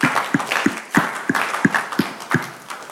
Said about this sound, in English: Can we please clap for her?